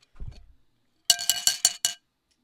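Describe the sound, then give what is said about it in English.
Glasses clink together in a toast, a quick run of about five bright, ringing taps, fairly loud, after a soft low thump or two; no one speaks. “Cheers to taking a risk.”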